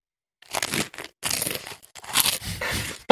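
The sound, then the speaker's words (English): Loud crunching of Cap'n Crunch's Sprinkled Donut Crunch breakfast cereal being chewed, a series of irregular crisp bursts separated by brief pauses, with no talking. “Hopefully you can hear my reco. It's what you're eating, okay.”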